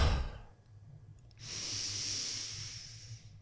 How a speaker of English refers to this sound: But when I'm cueing people to superventilate or do the Wim Hof method, I'm cueing a big breath in for 4 or 5 and then letting go for 2 or 3.